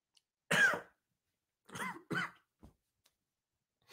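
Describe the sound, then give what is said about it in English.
A loud cough from drinking coffee, followed after a pause by two quick throat-clearing coughs, with short silent gaps and a faint click, no talking. “Why am I coughing from coughing from coffee?”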